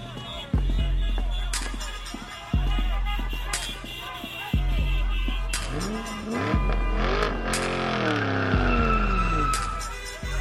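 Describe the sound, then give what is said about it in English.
Car engines roar and rev as tires screech in several sharp skids, one after another, with rising and falling engine whines as vehicles tear off at speed, loud. “I peered over the edge to see people running to their cars.”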